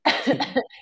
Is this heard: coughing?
yes